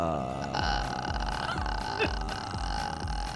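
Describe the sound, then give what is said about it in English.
Several voices hold a low, creaky vocal fry at once in a contest to see who can go the longest, a rough crackling rattle sustained for a few seconds with uneven pulses, loud and continuous with no words. “It's called vocal fry. Vocal fry. Because it sounds like a frying pan kind of thing.”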